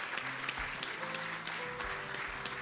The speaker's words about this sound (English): Come on, let's give a round of applause to welcome to all those who pray that prayer. Praise God.